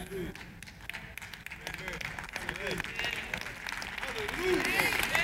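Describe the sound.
An audience breaks into steady applause, many hands clapping in a dense, continuous patter with scattered voices calling out beneath it, growing slightly louder toward the end.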